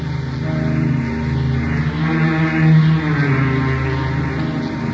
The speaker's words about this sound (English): Rain clouds were gathering for a squall as the motor launch strained through billowing waves toward an island looming on the horizon.